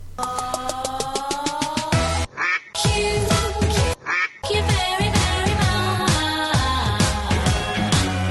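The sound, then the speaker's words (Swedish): Loud duck quacking sound effect, a busy run of repeated nasal quacks layered over a music-like bed, broken by two brief pauses before continuing to the end. “Ja, vi rasar vidare i vårt program och vi ska till veckans Kvack You faktiskt, som kommer att gå till Aftonbladet.”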